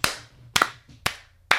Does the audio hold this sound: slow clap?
yes